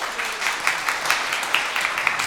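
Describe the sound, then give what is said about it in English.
A group of people clapping steadily for teams that have just built towers, a dense, even patter of many hands with small sharper claps popping out now and then, sustained at a moderate level throughout. “Nice job, give them a round of applause.”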